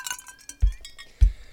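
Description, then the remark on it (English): A drinking glass gives a brief, bright clink, followed by two dull low thumps about half a second apart as it is picked up; no one speaks. “I picked up the glass.”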